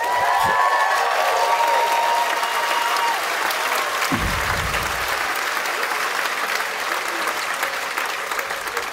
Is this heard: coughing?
no